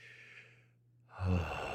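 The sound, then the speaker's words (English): A long breath drawn in through the nose, a brief pause of near silence, then a loud, breathy exhale gusting right against the microphone. “Do everything they tell you not to do. Breathing in the microphone, dead air, all that stuff.”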